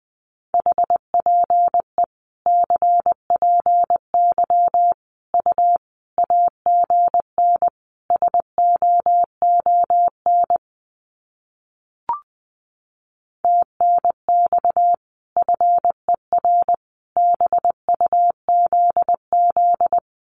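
Morse code at about 20 words per minute sending common QSO phrases: a single steady mid-pitched tone keyed into quick dots and dashes, sent in groups separated by short pauses, with one brief click in a gap.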